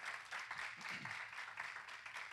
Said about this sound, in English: Come on, let's give God a hand clap of praise.